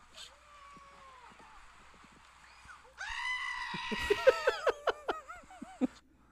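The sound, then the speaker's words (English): A goat lets out a loud, wavering bleat that breaks into a rapid series of shaky, stuttering cries, preceded by a quieter, softer animal call. “So I want to know, like, do goats really do that? Hold on. Here's 64 of them. One goat.”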